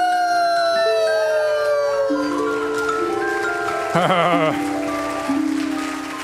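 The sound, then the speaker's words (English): Several long, overlapping wolf howls rise and fall in pitch, with a brief quavering yelp in the middle, loud and steady throughout with faint noise underneath. “Oh, it's a wolf. An insatiable wolf.”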